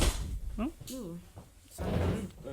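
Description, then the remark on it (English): A slightly open door is pushed shut, with a short scrape and a soft thud followed by a brief rush of noise. Bits of voice are heard around it. “That door's open, you know, by the way.”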